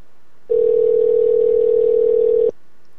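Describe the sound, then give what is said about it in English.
A single steady phone ringback tone sounds for about two seconds, clear and fairly loud, then stops, leaving quiet line hiss. No voices are heard. “It's ringing.”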